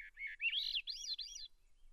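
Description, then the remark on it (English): A thrush newly arrived in its nesting country after northward migration gives a quick run of rising, whistled whit-like notes, heard intermittently with its song, clear and stopping abruptly after about a second and a half with quiet afterward. “They only make a short little kind of a whit note, we're hearing it just now, intermittently with the song.”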